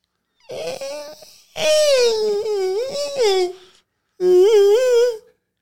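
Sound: voice imitating a fart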